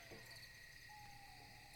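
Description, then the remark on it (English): A soft, steady chorus of cicadas and other insects chirping and buzzing continuously, with a thin high whine held throughout. It sounds unbroken, with no voices. “So in the meantime, you're just sitting and hanging tight as you hear the insects, you know, like cicadas and all that sort of stuff.”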